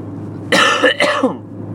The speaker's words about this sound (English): And excuse me for a second, I'm about to cough.